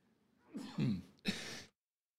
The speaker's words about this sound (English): Excuse me, sometimes you just have to sneeze.